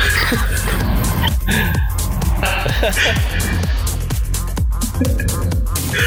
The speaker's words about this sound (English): I love that in the background. Sounds like a duck.